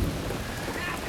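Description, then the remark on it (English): A low thunder rumble rolls beneath the steady hiss of heavy rain, filling the brief moment with continuous stormy noise and no voices. “There's some thunder. I don't know if you can hear it.”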